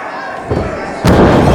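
A wrestler is knocked down onto the ring mat by another wrestler with a single heavy, booming thud about a second in, followed by a loud roar of crowd noise over the steady murmur of a busy arena.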